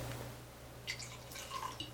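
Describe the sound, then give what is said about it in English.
Five-year-old Tobago Caribbean rum from the House of Angostura being poured into glasses far from the microphone, heard faintly as a few short, splashy trickles and drips over a low steady hum, with no one speaking. “I'm just going to pour it into these glasses over here, far from the microphone.”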